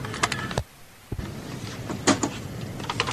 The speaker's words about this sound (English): Okay, here we go. I hear typing. I hear very 80s keyboard sounding typing.